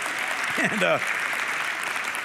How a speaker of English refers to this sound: I want you to stand right now for the gospel reading. Amen. You can clap at that.